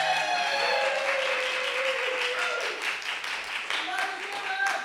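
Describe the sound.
A live audience applauds, with steady, dense clapping that fills the whole stretch and sounds like a roomful of people. Brief voices and faint cheers rise now and then over the clapping.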